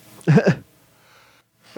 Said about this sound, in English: And I'm going to sneeze again. Dang it.